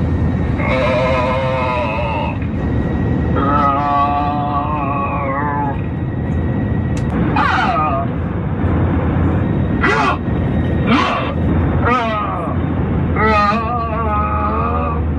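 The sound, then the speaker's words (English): Strange human-like moans and grunts play over the intercom of an American Airlines plane, recorded by actor Emerson Collins: a few long, wavering, tinny groans, then a string of short grunting bursts, all over a steady cabin drone. “So that was actor Emerson Collins flying on American Airlines last month, and while those human-like grunts and moans are certainly odd, what's odder is that multiple other people then chimed in saying that they too had experienced similar sounds”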